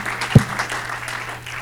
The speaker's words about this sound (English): I thought I'd get at least a hand clap. Come on, y'all gonna make me work this morning.